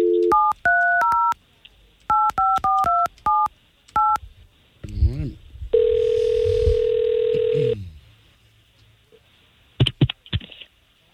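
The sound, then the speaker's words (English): A rapid series of touch-tone beeps as hosts of the K92.3 radio station in Orlando dial a woman's phone number, about a dozen short dual-pitch tones in quick bursts, followed by a ringing tone and a brief pause with faint clicks. “We're going to try to call her right now.”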